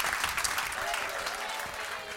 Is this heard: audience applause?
yes